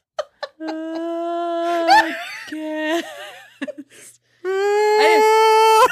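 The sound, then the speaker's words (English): A voice imitates whale calls with a series of long, drawn-out moaning tones. The pitch slides and wavers between calls, and two shorter yelps come first. No words are spoken. “That's whale speak.”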